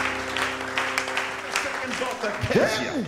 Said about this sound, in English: Oh, somebody give the Lord a clap in the house today.